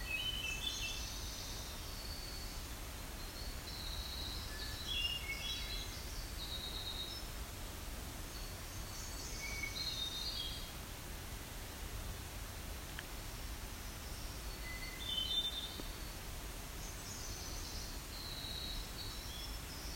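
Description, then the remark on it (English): A Nashville warbler sings high, thin phrases along a trail, repeating several times over a steady hiss of background noise, with no one talking. “So that may be a Nashville warbler.”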